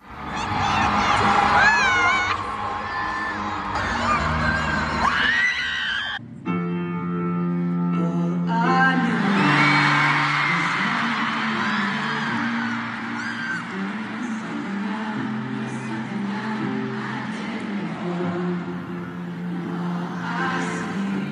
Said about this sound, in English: I have a clip here, and you can just hear the moment after the little bit of screaming, how the audience just throws right into the lyrics. Take a listen.